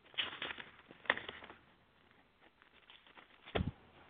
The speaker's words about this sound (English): Ooh, these little thin pieces of paper pages. I get back where I want to get to, and these pages start all clinging together.